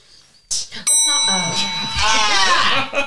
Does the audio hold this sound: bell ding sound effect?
yes